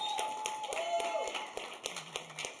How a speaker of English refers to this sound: Come on, keep it clapping. Show some love. That's okay to clap.